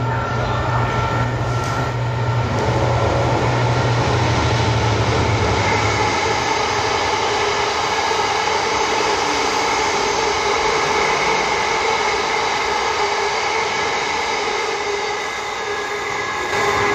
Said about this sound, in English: Oh, here comes a train.